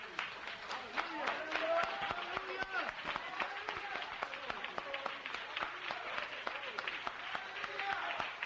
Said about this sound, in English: Let's give them a hand clap.